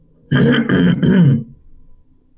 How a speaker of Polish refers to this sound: Chrząkam tak głośno, żeby mnie ktoś ze środka usłyszał.